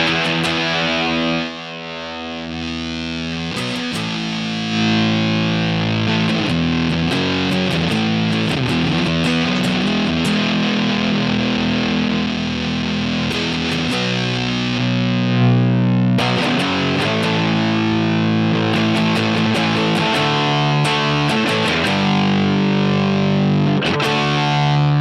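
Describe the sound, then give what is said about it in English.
A fuzzy, distorted electric guitar plays steady chords and riffs through an amp, loud and sustained with a gritty, buzzing tone and no voices. “It's still a little fuzzy, but yeah, you're relying on the amp more.”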